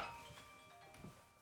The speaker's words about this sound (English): phone started ringing. His phone is what we use to record the video, man.